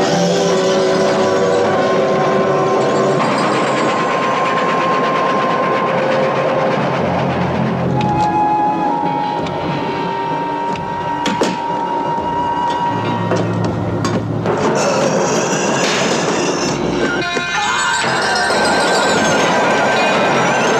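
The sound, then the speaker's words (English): A steam train, the Horror Express of the film, rolls along the rails, loud, with a steady rumbling clatter and sustained whistle-like tones running through the whole stretch. No one speaks. “Travel with us, if you dare, on the Horror Express.”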